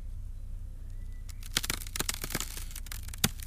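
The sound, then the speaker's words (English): Breaking ice: after a quiet start, a run of sharp, irregular cracks and crackles, with one louder snap near the end, over a low steady rumble. “This is Breaking Ice 1.wave by De Hemming.”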